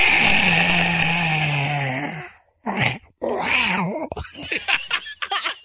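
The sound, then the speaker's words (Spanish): A human voice imitates a retching cat: a long, strained, gravelly groan, then a few short choking bursts and raspy hacking gags that break off abruptly. “Gatito se pone como si estuviera vomitando, ¿no?”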